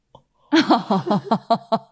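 A long, croaky burp that rumbles on for well over a second, pulsing in rapid rhythmic bursts before cutting off.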